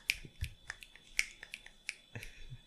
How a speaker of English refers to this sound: We don't want applause or likes. It's too loud. We want snaps.